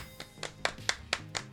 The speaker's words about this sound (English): Celebratory claps. Celebratory claps all round, folks.